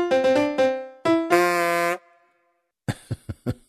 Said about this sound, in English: Get out of his way. He is honking. He is ready to pull over and find a restroom.